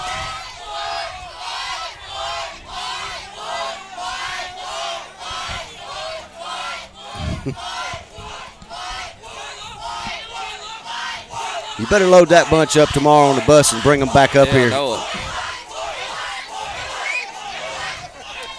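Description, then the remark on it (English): The Woodland and Cedar Bluff student sections trade loud chants and cheers back and forth during a tied game in the top of the fifth inning, rhythmic crowd shouting that swells into a louder burst of yelling midway, with a man talking over the noise. “The Woodland student section and the Cedar Bluff student section kind of going back and forth.”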